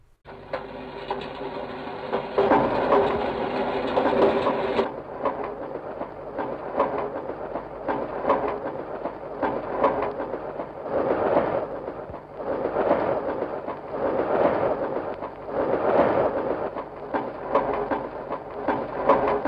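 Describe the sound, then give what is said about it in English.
A 1948 musique concrète composition made entirely of recorded train sounds: rhythmic clattering of wheels on rails, chugging pulses and metallic clanks layered together, with an abrupt edit early on and steady repeating bursts, fairly loud. “So this is made a song made out of all train sounds.”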